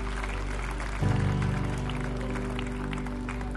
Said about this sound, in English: Yeah, you can give the Lord a clap offering. Thank you, Lord.